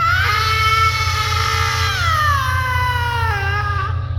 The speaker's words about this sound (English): And then she screamed.